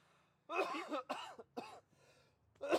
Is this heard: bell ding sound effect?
no